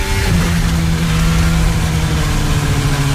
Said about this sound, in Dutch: En zo klinkt een Haas met een kapotte Ferrari-motor.